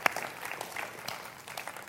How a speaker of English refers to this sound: Yeah, you can clap. Thank you.